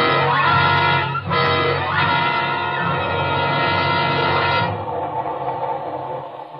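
A passenger train rolls along the rails, loud, with a steady droning, horn-like tone layered over the running noise before it eases and thins out near the end. No one speaks.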